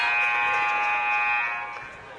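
A loud, sustained basketball arena buzzer ends the first half of a game between the Midland Warriors and Dort College after a missed Midland shot. It blares steadily for about a second and a half, then trails off over a murmuring crowd in the background.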